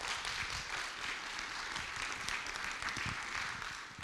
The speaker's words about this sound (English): If you're thankful for grace, give the Lord a good round of applause today.